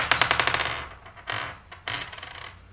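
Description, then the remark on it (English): Dice are rolled during a party game: small hard objects clatter and tumble across a hard surface in a quick burst of rattling clicks, followed by two shorter skittering rolls that settle. Fairly loud, with no voices. “roll the dice.”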